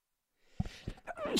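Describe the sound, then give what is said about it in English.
A single sneeze bursts out after a short, breathy intake of air, followed by a brief trailing vocal sound. “Bless you. Excuse me.”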